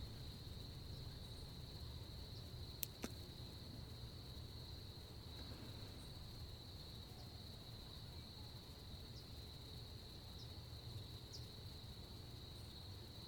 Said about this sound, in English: Perhaps you can hear crickets or evening bird song.